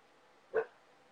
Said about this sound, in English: Your dog's barking at the cat. Yeah, he can tell that I'm drawing a cat.